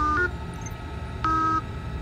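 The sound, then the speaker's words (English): Two electronic beeps, each a steady, buzzy mid-pitched tone lasting about a third of a second, separated by a pause of roughly a second, over a low rumbling hum. “Let's try one tone for yes, two tones for no.”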